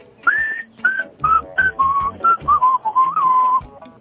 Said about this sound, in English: It's tough to beat a whistle.